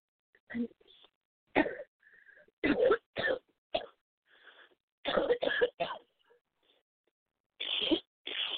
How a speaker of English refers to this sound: Keep coughing it out.